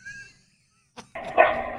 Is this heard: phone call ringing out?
no